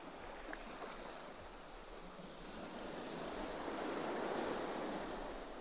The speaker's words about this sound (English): I would run straight into the surf and hear it splashing around me.